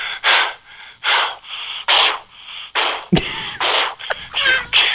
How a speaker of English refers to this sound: Yes. The heavy breathing situation. After running a marathon. Always fun.